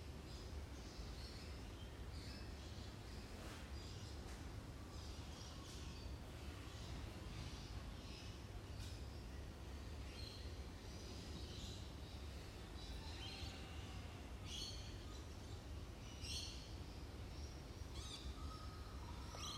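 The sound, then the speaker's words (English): Birds call and chirp outdoors in Australia, where kangaroos share the space, during a Zen meditation session, in a scattered, overlapping chorus over a steady low background hum. Nobody speaks. “Sharing this space with the birds and the kangaroos and other animals.”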